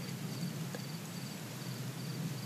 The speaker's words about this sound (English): We hope that you can hear those crickets because that's what we're listening to. But yeah, we're sitting on this huge knob of a rock in Moab, I guess north of Moab or east.